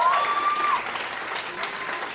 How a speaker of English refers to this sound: Yes, clap.